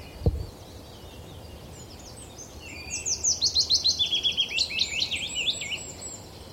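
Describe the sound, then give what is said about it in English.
A willow warbler sings a soft, descending cascade of sweet whistled notes, rhythmic and fairly loud, over a steady wash of a little streamlet running fresh off the mountain among tangled oaks, after a brief thump at the start. “Willow warbler.”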